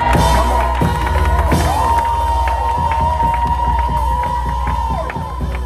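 An audience breaks into sustained applause and cheering in praise of Jesus, loud, with whoops and shouts over steady clapping and a bright ringing tone running throughout.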